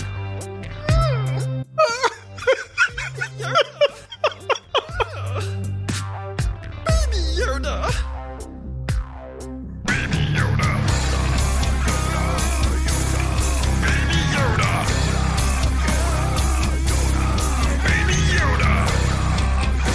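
Heavy metal song that opens with choppy, stop-start wailing vocal bursts, then crashes into a dense, loud wall of distorted guitars and pounding drums under harsh screamed vocals.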